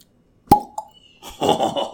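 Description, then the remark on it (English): A single sharp pop as a shot glass lid comes off a bottle, followed by a short hollow ringing note, then excited voices start talking over each other. “Well, Patron sold the shot glass lid originally. Hang on. Let's hear it pop.”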